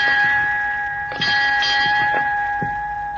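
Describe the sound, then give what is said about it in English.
A ship's bell on the bridge of the ship Gascony rings out in a series of sharp, metallic strikes over a steady, sustained ringing tone, loud, with no voices. “Who rang those bells?”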